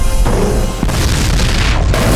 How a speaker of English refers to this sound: Racing away from the explosion. Get down.